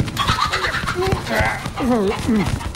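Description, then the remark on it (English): A bird squawks and warbles in agitated, wavering bursts, fairly loud, over a steady scuffling and rustling as its feathers are plucked in a 30-second plucking test. “Right, well, if you want a job here, you'll need to show me you can pluck a bird in 30 seconds flat.”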